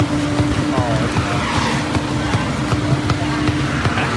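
A car rolls along with a constant loud, rough rumble from a damaged wheel, a rhythmic knocking thumping through it, while a high tire squeal rises and wavers briefly over the noise.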